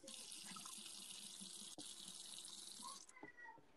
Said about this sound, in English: Or you can also hear this water.